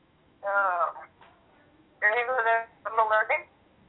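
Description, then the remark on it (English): Thin, tinny voice fragments come through a poor phone line in three short bursts, the muffled syllables seeming to repeat back like an echo against a faint hiss. “Yeah, like an echo. Yeah, I think it's my phone is bad.”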